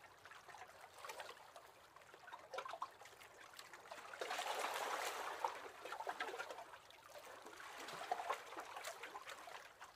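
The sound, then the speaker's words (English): Water gently laps and trickles beneath a moored boat at a small jetty in Balmaha, a soft continuous burbling with swells of louder sloshing, steady, with no voices. “Swinging from side to side with the rhythms of the water below.”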